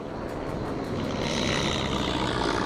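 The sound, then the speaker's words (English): A propeller airplane drones steadily overhead, its engine a continuous loud hum with a slowly rising pitch as it passes, no voices present. “There's a plane waiting for them. They fly out.”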